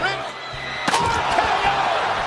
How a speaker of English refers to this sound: I want people to think I'm a little angelic, and then I'm gonna sneak up behind them and I'm gonna smash a chair on their head.